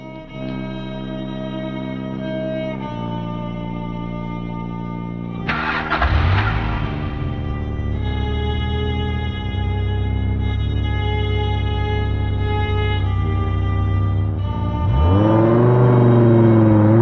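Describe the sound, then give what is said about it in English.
A 1967 Charger muscle car engine cranks and roars to life, then revs loudly with rising sweeps, over a steady droning, music-like background, with a second strong rev surging near the end. “Nice car. 67 Charger.”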